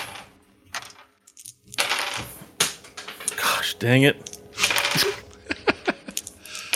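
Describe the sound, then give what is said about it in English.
Dice drop and clatter across a hard table in a quick burst of sharp, bouncing clicks, followed by a few scattered taps as they settle, with a person muttering. “Every time you drop a dice, you can't use it for damage.”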